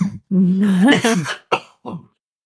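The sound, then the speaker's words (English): A person coughs and hacks from too much pepper: a long, strained, throaty cough followed by two shorter, sharp coughs in quick succession, loud and raspy, with no talking. “Good thing I hooked up that cough button over there.”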